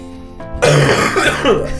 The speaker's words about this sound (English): Kill me with that last cough in my ear.